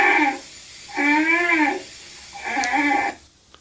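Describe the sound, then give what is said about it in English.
A polar bear cub honks for its mother in three drawn-out, nasal, bleating calls, the middle one longest, each rich in harmonics and separated by short pauses, with no voices. “So if you'll bear with me, I'll play a little clip of a cub that is looking for its mom.”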